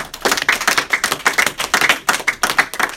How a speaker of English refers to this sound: Clap for God.